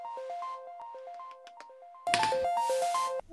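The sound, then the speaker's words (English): A phone ringtone in the trailer for the film Problemista plays a quick, repeating melodic pattern of bright tones, steady and clear, then continues over a sudden burst of louder, noisier background sound in the second half. “A phone call.”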